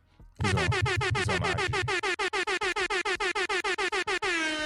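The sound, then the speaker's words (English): A blaring air horn sound effect: one long loud blast, then a rapid string of short staccato honks, ending in a sustained tone. No one speaks over it. “Let me make sure I get that air horn ready.”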